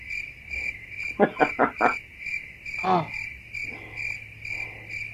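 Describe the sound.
A cricket chirping sound effect plays steadily and shrilly throughout, continuous, interrupted by a few quick knocking taps and a brief spoken exclamation partway through.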